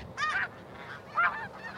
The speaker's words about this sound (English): Those Canadian. Are snow geese. See the black and white? Yeah. Those are snow geese. Wow, we saw our first snow geese.